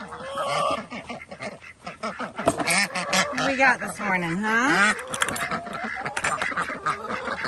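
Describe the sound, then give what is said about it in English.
A flock of ducks quacks in a loud, busy clamor of overlapping calls as the birds are let out in the morning, while a person talks over the noise. “There go the ducks.”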